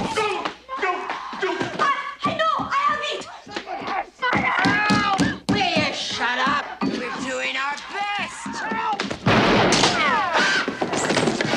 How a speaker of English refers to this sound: It's no good! Stand back! No! There's no alternative. I'm just gonna have to break it down!